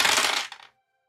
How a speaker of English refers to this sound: Yeah, roll your dice. Okay. Roll your damage again.